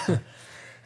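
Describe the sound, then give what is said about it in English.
A single short cough or throat-clear from a person bursts out at the very start, followed by low, steady hiss and no further sound. “Oh, now you're coughing, all right?”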